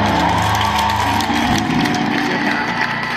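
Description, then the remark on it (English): An audience claps together, a dense, steady patter of many hands over a low rumble of crowd noise that continues throughout without pause. “The way y'all clapping, I'm gonna join either.”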